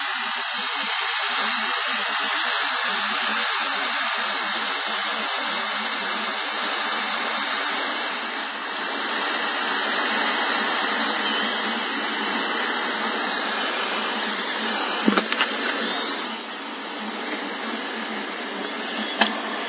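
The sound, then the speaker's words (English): A pressure cooker cooking onions and garlic releases steam in a loud, steady high-pitched hiss that holds for the whole stretch. A sharp click near the end is the valve dropping into place. No voices. “And steam is just about ready to be dissipated now.”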